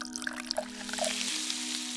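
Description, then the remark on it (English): Acid from a small green vial pours in a thin, steady stream into the keyhole of a lock, starting with a few small splashes and building into a continuous trickle over a constant low hum. “Got both hands grasped like a kid holding a pencil, and then I pop the cork, and I start pouring it into the keyhole.”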